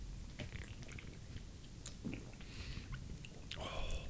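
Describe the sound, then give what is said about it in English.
Mouth sounds of someone sipping and tasting a lemony-smelling beer: a couple of airy slurps and soft lip smacks over a low, murmuring background. “Do you use any particular technique when tasting, or you just lash it in me?”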